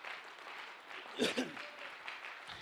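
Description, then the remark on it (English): An audience claps steadily in praise of the Lord, a dense wash of hands with scattered voices and a brief shout rising in the middle before the applause carries on. “Give the Lord a hand clap of praise for it.”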